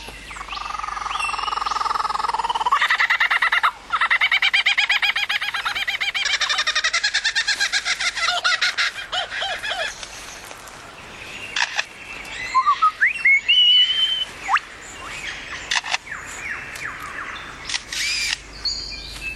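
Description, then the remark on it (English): A male lyrebird runs through a rapid medley of mimicked calls, including a kookaburra, a car alarm, camera shutter clicks and chainsaws: rattling trills, mechanical clicks and whistled notes, loud with no talking. “In this recording by Barry Britton, listen to the calls from one male lyrebird.”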